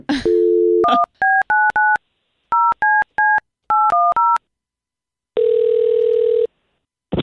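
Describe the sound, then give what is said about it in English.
A telephone dial tone, then a quick run of about ten keypad beeps in uneven clusters as someone calls a person back. After a pause comes a longer steady tone and a final click, all clear with no talking. “we were just trying back one more time”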